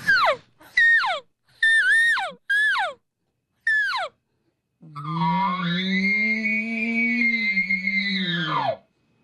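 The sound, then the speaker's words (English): Five short, descending mewing chirps give way to a long, loud elk bugle: a high, wavering whistle over a low, raspy growl, sustained for about four seconds. The calls are imitated with a game call. “That's a bugle.”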